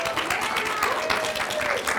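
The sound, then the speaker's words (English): A crowd applauds steadily for a woman's birthday, a dense wash of many hands clapping at an even, fairly loud level, with faint voices and a few cheers mixed into the noise. “Let's all give her a round of applause.”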